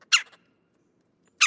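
Two loud, harsh, rolling calls of a red-bellied woodpecker, each a short burst with a brief buzzy tail, separated by more than a second of silence.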